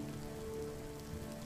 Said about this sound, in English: You are standing on a beach in the rain.